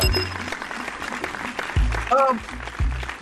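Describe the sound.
A burst of recorded applause, dense and steady, fills the whole moment, with a few voices cheering or calling out over the clapping.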